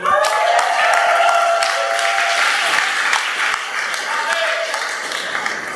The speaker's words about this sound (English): So can we have a round of applause for coffee?